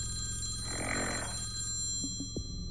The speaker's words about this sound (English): The phone rings again.